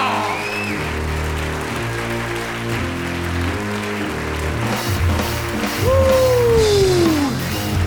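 A live audience claps steadily, a dense patter of many hands, while a low musical tone and a descending sliding note play underneath; the applause swells slightly near the end.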